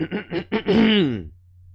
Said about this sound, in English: Let me clear my throat for this shit.